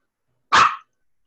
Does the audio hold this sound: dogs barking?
yes